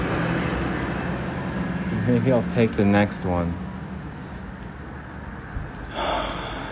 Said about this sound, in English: Oh, here's another bus. Going the opposite direction. I'm not taking that one, though.